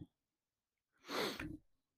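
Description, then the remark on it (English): A single sharp sniffle, a breathy, hissing intake lasting just over half a second, rising quickly and tailing off, in an otherwise quiet moment with no talking. “I know I keep sniffling.”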